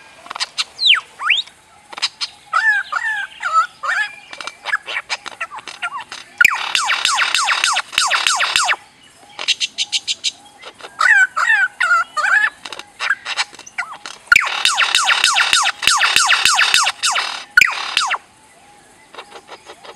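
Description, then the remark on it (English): A bird mimics car alarm and machinery sounds, alternating warbling whistles with loud, rapid buzzing rattles, repeating in cycles with no talking. “it will start mimicking drills and bulldozers and the beep, beep of trucks backing up and stuff”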